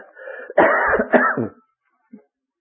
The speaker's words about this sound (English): Oh, that's about the first little cough I've had, friends. Don't criticise too much.